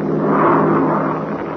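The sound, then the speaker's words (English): A French racing airplane with the French flag painted on its fuselage roars past during an air race, its engine a loud, steady drone that swells briefly and then eases off slightly, with no voices. “Boy, what an airplane. It's the French entering the race.”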